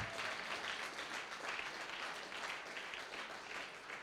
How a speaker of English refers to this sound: Come on, let's give an applause to all the mothers in this place.